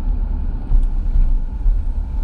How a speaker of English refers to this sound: Damn, this traffic is out there tonight, man.